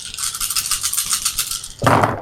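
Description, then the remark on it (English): Dice rattle rapidly in a dense, bright clatter for almost two seconds, then spill out in a fuller, louder burst of tumbling clicks. No one speaks. “One, and there's still 5 dice left.”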